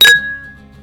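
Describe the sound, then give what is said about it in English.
Two drinking glasses clink together once in a toast, a bright ringing strike whose high tone hangs and fades over the following second. “Almost broke my glass.”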